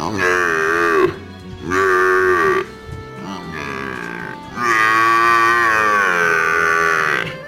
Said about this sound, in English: Do you sound more like a wet cat? Or a wounded water buffalo in heat?